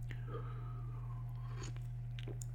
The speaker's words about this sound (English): It's probably when somebody walks by and you're listening to this. They're like, what are you listening to? I'm just listening to somebody drinking coffee.